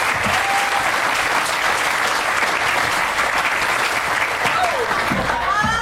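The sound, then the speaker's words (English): Steady, dense audience applause for the performers as they pack up fills the whole stretch, a loud wash of many hands clapping at once with a few faint voices and whoops rising through it. “Let's hear it for all of them as they pack up”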